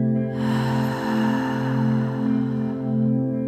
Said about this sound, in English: And this time exhale through the mouth, opening the mouth. Making a sound.